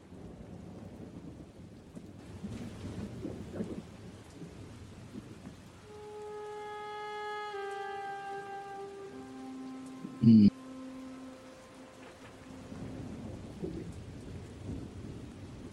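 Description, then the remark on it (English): Steady rain hisses throughout while low thunder rumbles roll underneath. Sustained musical tones swell through the middle, and a sharp, loud crack stands out briefly near the end. “Is that rain I hear too?”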